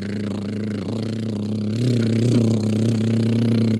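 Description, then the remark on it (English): A voice imitates a boat engine with a steady, low buzzing drone that holds for several seconds, growing a little louder and rising slightly in pitch partway through, with no words spoken. “That's like a boat sound.”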